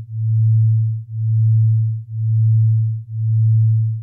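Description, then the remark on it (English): A binaural beat from two low sine tones, one played into each ear through headphones: a steady hum that swells and fades about once per second, four smooth pulses, heard alone with no talking. “And that oscillating sound is a binaural beat.”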